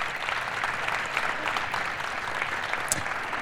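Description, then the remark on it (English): An audience, standing, claps steadily for graduates of the Community Leadership Course for Veterans, a dense, continuous patter of many hands at even loudness, with no voices standing out over it. “Please stand up and let's please give them a round of applause.”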